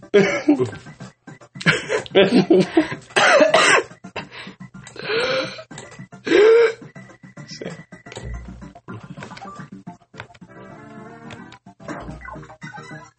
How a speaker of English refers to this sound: You got his cough too.